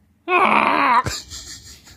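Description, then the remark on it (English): A person imitates a camel with a loud, rough, wavering groan lasting under a second, cut off abruptly and followed by faint rustling. “Wherever you are, audience, just make a camel sound to yourself real yes. quick.”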